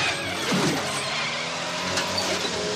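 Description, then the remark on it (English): In a film scene, Chevy Chase's car brakes hard and skids into a violent spin, a steady rush of engine and tire noise with a brief rougher burst near the start, no voices. “This guy slams on the brakes.”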